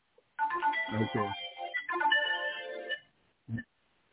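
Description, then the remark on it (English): A phone ringtone plays a bright, tuneful melody for about two and a half seconds, fairly loud, followed after a short pause by one brief final note, ringing during a Bible reading. “Okay, someone has to mute your phone.”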